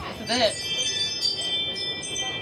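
A Ring video doorbell chime rings out in sustained, bright electronic tones that hang steadily over a faint background, with a brief human vocal sound near the start.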